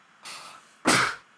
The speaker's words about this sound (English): Hang on, I have to sneeze.